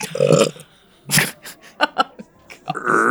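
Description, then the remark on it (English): A loud, drawn-out belch rumbles up, followed by scattered short vocal noises and another sustained guttural sound toward the end. “where we feel the good beer is best when paired with bad accents and long belches.”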